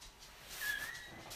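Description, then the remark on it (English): A dog whimpers once, a thin, high-pitched whine that rises and fades in under a second, fairly quiet against a faint background hiss with no one speaking. “Fucking dog.”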